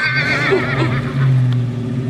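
A horse whinnies loudly, one drawn-out neigh with a quavering, wavering pitch that carries for about two seconds, with no voices alongside it.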